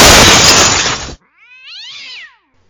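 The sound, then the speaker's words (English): A loud glass-smashing sound effect cuts off abruptly, followed by a single drawn-out cat yowl sound effect that rises and falls in pitch, clear with no talking. “I mean, it does give us an excuse to use the glass smashing That's sound true, and effect, the cat.”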